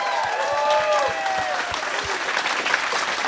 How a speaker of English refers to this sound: Let's give another round of applause for the crew of the Westerdam. That's fantastic.